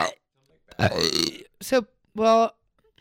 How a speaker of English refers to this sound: What if there's a montage of me just burping? I burped a lot. I have to burp. I always burp every podcast, but I don't think I'm going to do it. Oh, sorry. I'm sorry. I'm sorry.